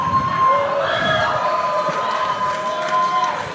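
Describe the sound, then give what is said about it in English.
An audience applauds and cheers in a steady, dense roar that holds for several seconds, with a few shrill whistle-like tones rising above the clapping before it starts to ease off. “All these applause lines, I feel like the white Bill Maher tonight.”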